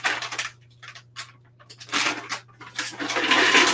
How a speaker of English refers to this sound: Just adding a bag of organic cashews to my blender.